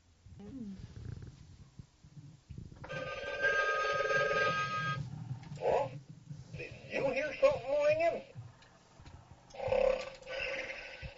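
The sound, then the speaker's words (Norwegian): A novelty telephone that has been used as a real phone rings in several loud electronic bursts, mixed with warbling tones and growly, voice-like sounds between the rings. “Den har vært i bruk på ordentlig, som en telefon.”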